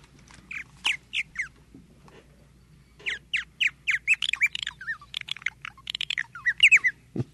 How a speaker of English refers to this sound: That's the purple martin. That's the first neotropical migrant to come back to the state, or to, you know, North America. In the spring, and they have already, some have already arrived.